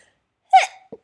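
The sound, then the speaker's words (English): A single sharp sneeze bursts out, followed by a quick breathy sniff and a faint hiss of air; no talking accompanies it. “Bless you, buy me a soda.”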